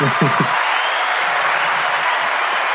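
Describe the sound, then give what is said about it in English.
A steady wash of clapping fills the whole stretch, dense and even like a crowd applauding a rapper, with a brief voice audible at the very start. “Round of applause for …, man.”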